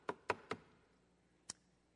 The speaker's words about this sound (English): And shortly afterwards, Winton recalls, his mom got a knock at the door.